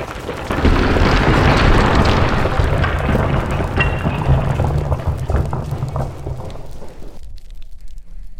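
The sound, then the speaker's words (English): A hole is punched in a building's wall with a loud booming crash, followed by several seconds of dense, rumbling rubble tumbling down before the noise thins to a low lingering rumble. “They punched a hole in the wall. We gotta get out before the building collapses.”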